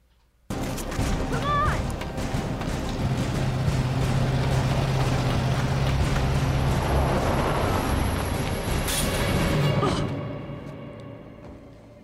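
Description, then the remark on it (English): A truck engine roars loudly and steadily for about nine seconds, a dense rumbling drive sound, then cuts off and leaves a faint fading tail. It is a truck in a played political ad against Virginia gubernatorial candidate Ed Gillespie, paid for by Latino Victory Fund. “Democrats just last week ran an ad against Virginia gubernatorial candidate Ed Gillespie depicting a Republican truck mowing down children of ethnic minority.”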